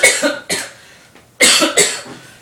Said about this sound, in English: He's got a sore throat. I don't believe you. I think it is. Although I can't really cough like effectively on cue, so.